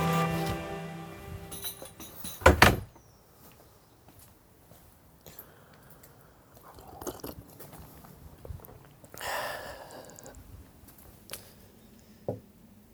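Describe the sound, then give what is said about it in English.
A front door in London opens with a sharp clunk of the latch as a man steps out with a cup of tea in hand in June 2021, followed by soft scuffing steps and faint rustling, with a brief tap near the end. “as he steps out of his front door in London, cup of tea in hand, in June 2021.”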